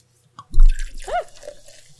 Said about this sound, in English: Yeah. Brownie caramel cream root beer. Yeah. Excuse me while I pop my top. Oh, your top. Yep. There it goes. New cute little cap with a dude on it. Very 50s throwback kind of design on the side here. Kind of cool. And the pour.